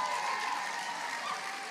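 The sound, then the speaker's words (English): An audience claps steadily, a dense wash of many hands blending into a bright, even roar that holds at the same moderate level throughout, with no voices standing out. “You need to just jump or clap or do something.”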